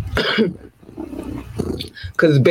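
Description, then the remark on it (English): A person growls and roars with their voice, mimicking a big cat in a few rough bursts, the last one loudest. “You want me to be purring. You don't want the roar.”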